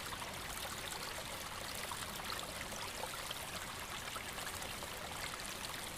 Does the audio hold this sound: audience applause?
no